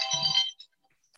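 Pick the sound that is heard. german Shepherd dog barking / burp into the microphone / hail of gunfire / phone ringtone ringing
phone ringtone ringing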